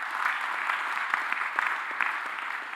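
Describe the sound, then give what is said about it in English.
A steady round of applause from a church audience, many hands clapping densely with scattered sharper claps standing out, sustained at an even, moderate level with no voices. “But first of all, I want you to give yourself a round of applause because you came to church.”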